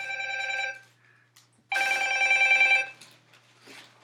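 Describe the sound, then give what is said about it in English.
A telephone rings twice, an electronic trilling bell in two bursts of about a second each separated by a pause, fairly loud with no one talking over it. “Who's your uncle on the phone?”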